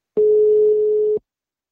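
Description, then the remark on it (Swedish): A single steady electronic ringback tone from an outgoing phone call to someone in Uppsala, Sweden: a clear, mid-pitched beep lasting about a second, loud, then silence. “Då tar vi henne och ser om hon vill svara i telefon också.”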